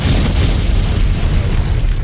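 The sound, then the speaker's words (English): A loud explosion sound effect with a deep, rumbling boom that fills the low end and sustains as a dense roar for about two seconds, with no voices. “It deserved an explosion.”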